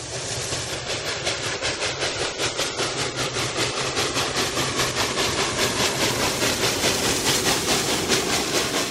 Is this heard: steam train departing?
yes